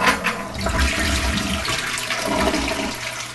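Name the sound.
toilet flushing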